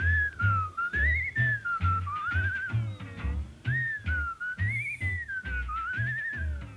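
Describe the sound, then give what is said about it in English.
Someone whistles a wandering, tuneful melody, sliding up and down in pitch, while a steady low thumping rhythm pulses underneath throughout. “It broadcasts over 12 nights a comparative study of whistles, including whistles that your high school track coach favored when he was in a bad mood, and that guy up the street who can whistle like nobody's business.”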